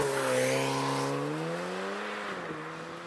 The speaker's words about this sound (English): this car has been remapped to stage one, so it makes even more power. So this is a nippy little hatchback, again all-wheel drive, so the power goes to all four wheels, and this car just goes, as you see right here.